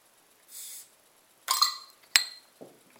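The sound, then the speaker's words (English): A short hiss, then a sharp metallic pop and a bright clink as a beer bottle cap comes off and drops to the floor, followed by a brief gurgle of dark beer starting to pour into a glass, without talk. “Right, let's get this out into my glass and see what I think of it.”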